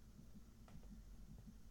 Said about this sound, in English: What's with the heartbeats and the pauses?